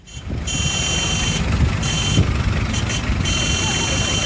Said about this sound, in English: Oh, those are the convertible cars here to pick us up for our drive through the city in the Havana rainforest.